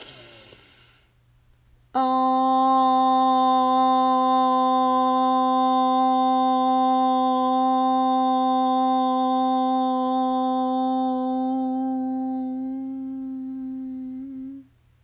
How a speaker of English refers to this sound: And let's take a deep breath in, and we will use the tone Om. We'll breathe in, say Om as loud and as long as we can. Breathe in.